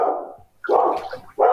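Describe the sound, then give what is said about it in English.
A dog barks three times in quick succession, loud, each bark a short harsh burst with brief gaps between them; a meeting participant's dog heard during a remote Zoom call. “It's not your dog? Whose dog is that?”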